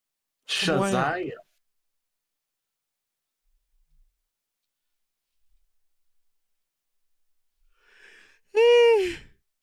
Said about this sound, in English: Oh, I keep yawning.